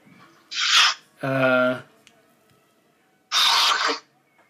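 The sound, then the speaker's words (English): A person with hay fever sneezes loudly: a sharp breathy burst, a strained voiced 'ah' build-up, then a pause before a forceful, explosive sneeze. No one speaks. “Bless you.”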